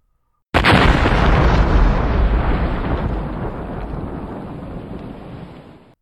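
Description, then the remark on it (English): A sudden, loud explosive blast erupts as a crashing ship hits the ground, then rolls on as a long, rumbling roar, slowly fading over several seconds with no voices present. “An explosion like a bomb going off. The truck ship had hit the ground.”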